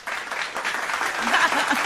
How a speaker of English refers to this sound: And claps.